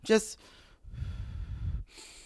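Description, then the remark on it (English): An audible deep breath taken during meditation: a short voiced gasp at the start, then a long, rushing breath of about a second, ending in a faint hiss. “If on those two little inhale, exhale, she's already gone to another plane of existence.”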